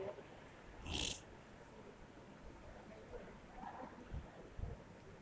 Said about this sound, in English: Oh my god, it's raining!